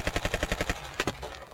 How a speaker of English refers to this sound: They were immediately met with gunfire. The police were prepared this time, hitting the house with tear gas, high-pressure fire hoses, and more than 10,000 rounds of ammunition in just an hour and a half.